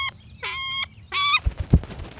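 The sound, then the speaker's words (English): A falcon named Agave, one of several birds kept to protect grapes, calls out twice in harsh, rasping bursts, followed by a few soft low thumps. No one speaks. “Agave of all of my birds is the most fun.”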